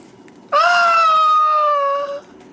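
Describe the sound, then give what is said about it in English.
A woman's loud, high-pitched shriek holds for nearly two seconds on a steady, piercing pitch with a slight wobble, then cuts off, heard alone with no talking. “He's answered with the shriek of a woman.”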